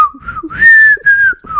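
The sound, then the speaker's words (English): A person whistles a short, bright TV theme tune, the clear tone sliding between held notes for under two seconds, with no talking over it. “I can't whistle.”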